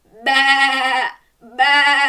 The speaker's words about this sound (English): Finally then, sound number 5. Listen very carefully. That's it. It's a sheep. Can you bawl like a sheep?